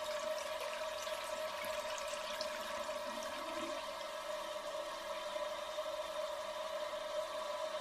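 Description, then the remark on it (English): A toilet flushes with a steady, loud rush of water that continues for several seconds without letting up, with no voices. “Just don't flush, or there'll be another flood.”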